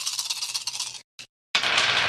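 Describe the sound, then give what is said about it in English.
A bright, rattling clatter of dice tumbling, rolled in a game for a character firing a rifle at an alien, a dense burst of clicks that stops, a brief tap in the silence, then another steady run of rattling. No one speaks. “As soon as I remember how many dice that is.”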